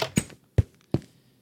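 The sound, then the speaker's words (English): A door opens with a few dull thumps, irregularly spaced like footsteps passing through, each short and low with quick fades into silence. No one speaks. “Let's go through the door.”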